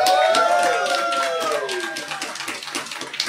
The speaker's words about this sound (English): These are, if I may interrupt, the three most interested looking people I have seen in a panel. They're down for Atomic Robo. Let's see if by some chance these mics will pick up you guys cheering and applauding.